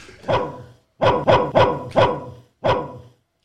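A dog barks loudly, six sharp woofs: one bark, a short pause, a quick run of four, then a final bark after another brief gap.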